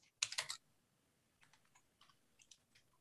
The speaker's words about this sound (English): Accidentally hit a 5 whilst typing and instead of 6 because the keys are like right next to each other.